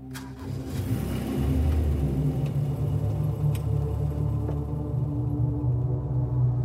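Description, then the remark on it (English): A car engine starts up and rumbles steadily as the vehicle pulls away, a low, continuous drone with a few faint clicks, no voices. “They got in the car, and we drove off.”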